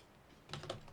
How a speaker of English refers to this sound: Okay, we're back. Try not to drop things on the keyboard while recording.